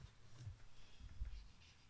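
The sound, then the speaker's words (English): Quiet scratching and rubbing of a pen signing a vinyl record sleeve, a few short strokes in soft bursts with no talking. “And I'm hoping you could sign it.”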